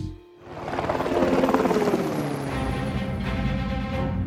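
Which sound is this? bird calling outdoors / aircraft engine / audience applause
aircraft engine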